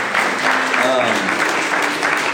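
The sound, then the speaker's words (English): An audience claps in a dense, steady round of applause, many hands blending into a loud, even patter throughout, with faint murmuring voices mixed underneath. “And so can we give them like a round of applause?”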